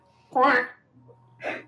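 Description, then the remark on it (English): A duck quacks loudly, one long harsh call followed a moment later by a shorter second quack. “That duck was pretty loud just now.”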